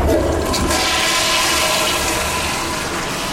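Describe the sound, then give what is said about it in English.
A toilet in a building designed to clean its own water flushes with a loud, steady rush of water that fills the whole moment, continuous, with no voices over it; the water goes out to an anaerobic digester. “that water from the toilet goes out to an anaerobic digester and then comes back in through what looks like a tropical greenhouse, but it's actually got a name called a living machine.”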